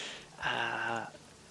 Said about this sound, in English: Come inside. Get away from the rain for a moment here.